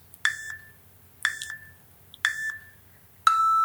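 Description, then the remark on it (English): Four sharp electronic beeps spaced about a second apart, the first three short with a quick echoing blip after each, the last one held longer and steady, clear and loud over a faint low hum. “Oh, and you get beeps.”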